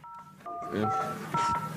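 A phone ringtone mix plays: steady electronic dual-pitched telephone tones in a few short bursts, fairly loud, with some murmuring sounds blended underneath.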